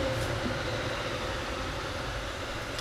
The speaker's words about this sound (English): Thursday afternoon Metro going by.